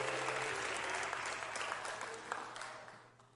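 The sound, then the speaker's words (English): A church audience breaks into sustained applause as a hand clap of praise to the Lord while taking their seats, dense overlapping hand claps at a steady loud level that gradually fades toward the end, with a low hum underneath. “Give the Lord a hand clap of praise as you're seated tonight.”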